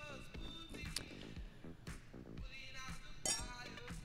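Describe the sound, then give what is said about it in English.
Glasses clink together in a toast against the microphones, two bright ringing chimes a couple of seconds apart, over soft handling noise and faint background voices. “Let's get a clink on the mics.”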